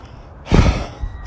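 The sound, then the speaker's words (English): A single heavy, breathy exhale, like someone winded from exertion, from a person walking up a hill with a dog, followed by quieter breathing against a low background hum. “It's the only reason I'm breathing hard is because I'm walking up a hill with my dog.”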